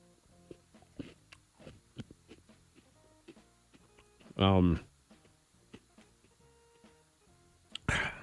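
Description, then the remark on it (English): Crunchy chewing of a spoonful of Cinnamon Toast Crunch cereal with ranch, with irregular wet clicks and crackles, broken by a loud voiced hum in the middle and a short vocal burst at the end. “Yeah, it's on this spoonful that I'm about to take.”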